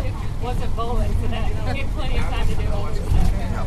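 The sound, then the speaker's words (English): Steady low engine rumble fills a moving bus carrying Dave Koechner, Heidi Gardner and Paul Rudd, loud and constant throughout, with people talking over the drone. “I'm looking at Dave Koechner right now, sound asleep on the bus.”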